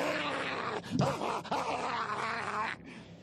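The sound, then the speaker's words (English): A dog whines and groans, a few wavering, pitch-bending cries over a steady hiss of background noise, with no one talking. “As soon as they saw me, they came bounding over.”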